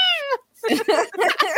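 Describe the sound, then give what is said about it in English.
A person imitates a fat pet cat with one short, high, squealing meow that slides downward in pitch, followed after a brief pause by voices talking. “But instead, it's like a high pitched squeal, like he's like yelling at you. It's like. Meow.”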